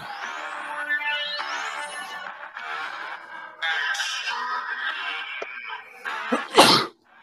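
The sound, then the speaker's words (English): A single loud sneeze bursts out near the end, following several seconds of bright, layered music with rising tones, then cuts off abruptly. “Yeah, preemptive cuts the sneeze off.”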